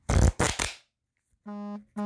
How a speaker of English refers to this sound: let's get the shuffling of the cards and let's have a little fun here.